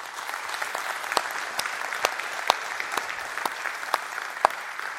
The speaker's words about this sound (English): And so I wonder if we can give a round of applause to our staff here.